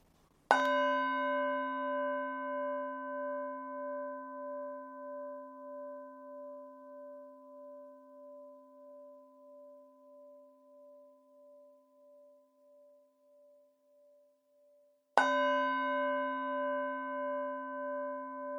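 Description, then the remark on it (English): A sacred meditation bell is invited three times at the start of a meditation; its rich shimmering tone slowly pulses as it fades over about fifteen seconds before a second strike rings out again, with no voices. “We start by inviting the sacred bell three times.”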